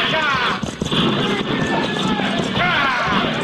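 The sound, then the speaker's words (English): Horse teams gallop through opened gates into a mission yard, a loud, steady clatter of hooves filling the scene, with shouting voices rising over the rush of movement. “Bring those horses to a halt.”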